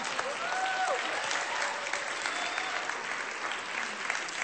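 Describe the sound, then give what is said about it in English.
A crowd applauds a woman who has just spoken, steadily for several seconds, a dense, even wash of clapping hands with no pauses, along with a faint, brief whistle-like tone early on. “You can clap.”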